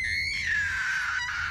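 A long, piercing scream holds one high, shrill pitch for over a second, sliding slightly downward as it goes. It is loud, with no talking.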